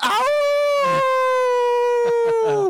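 A single drawn-out wolf howl rises quickly, then holds a steady, loud tone for a couple of seconds, with a few brief breathy bursts near the end.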